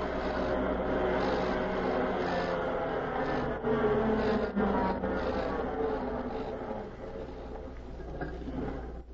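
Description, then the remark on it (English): A car engine hums and rumbles steadily as the car drives to the outskirts, fairly loud with no voices, the noise easing slightly toward the end as it slows and stops. “The spy, and the one whom he called Excellency, drove to the outskirts and stopped their car.”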